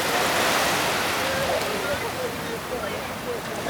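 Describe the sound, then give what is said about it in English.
Sea waves wash steadily up onto a beach in Connemara, just outside Galway City, Ireland, on a 26-degree day in mid-September, a loud, continuous hiss of surf swelling slightly early on and easing off as the water spreads across the sand and catches someone's toes. “Oh, here comes the water. Watch out there, Mike. Catching your toes too.”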